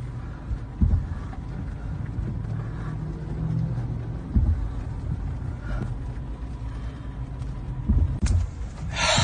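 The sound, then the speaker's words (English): A steady low rumble of vehicle engines driving past a parked car, with a few brief louder swells and thumps as they go; no one speaks. “I'm sitting in my car crying right now over the loss of more lives, and this is what is about to drive past me.”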